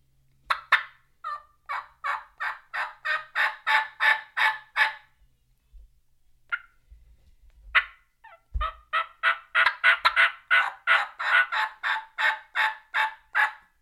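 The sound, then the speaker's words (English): A turkey hen gives two long runs of loud, rhythmic yelps, broken by a pause with a few sharp, isolated cutting notes. No one speaks. “And I'm like, oh, there's a hen down there. So a couple cuts and a yelp.”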